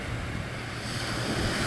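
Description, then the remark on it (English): Pacific Ocean surf rolling onto Waikiki beach in Honolulu in a steady, full roar of breaking water, with some wind buffeting the microphone and no voices present. “You can hear the sound of the waves crashing in front of me.”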